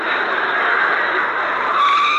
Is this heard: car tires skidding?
yes